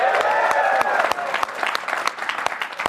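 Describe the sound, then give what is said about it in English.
A crowd claps steadily, a dense wash of many hands with sharper individual claps popping through, while some cheering or whooping tones ride over the start before the applause thins slightly. “and now we have time for applause”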